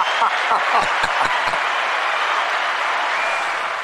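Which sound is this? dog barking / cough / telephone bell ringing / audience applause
audience applause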